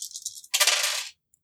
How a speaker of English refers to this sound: what happens is just roll me five dice. Five dice? For your thieving abilities.